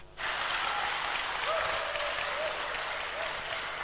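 A church audience breaks into sustained applause for those who led prayer and worship: a dense steady wash of many hands clapping at once that starts abruptly and holds at an even, fairly loud level with no talking over it.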